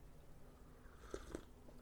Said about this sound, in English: Let's have a quick sip of coffee, because I'm actually doubling up right now.